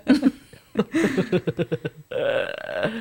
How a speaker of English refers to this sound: Oh, it's like a big belch.